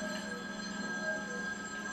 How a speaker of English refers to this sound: We got a telephone ringing over here. Remember those?